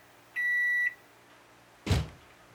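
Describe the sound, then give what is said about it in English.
A microwave oven heating a bowl of leftover pasta gives a single steady, high electronic beep lasting about half a second, then a brief pause and a dull, heavy thunk like a door shutting, over a faint low appliance hum. “leftover pasta from two nights earlier, dumped it in a bowl, and popped it into the microwave.”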